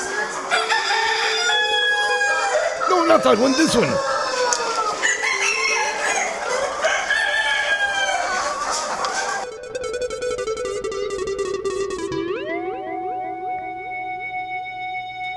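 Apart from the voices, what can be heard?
chicken clucking and crowing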